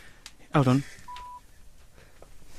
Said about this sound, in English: Yeah, I'm dialing it. It's ringing.